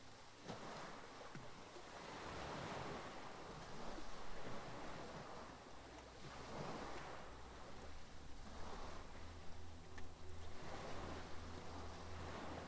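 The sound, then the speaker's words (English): Sea water in a rock pool surges and recedes with the current in slow, broad swells, a soft continuous wash with gentle rises and falls, with a low rumble of wind underneath and no voices. “Although the water here is magically still, it swells gently up and down with the current, like a living, breathing thing.”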